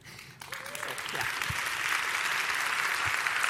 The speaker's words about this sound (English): Yeah. Applause. Great.